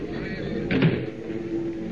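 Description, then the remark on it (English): A rear door opens and shuts with a brief clunk midway through, set against a steady low droning rumble that continues throughout. No voices are heard. “Now, to get out that rear door again.”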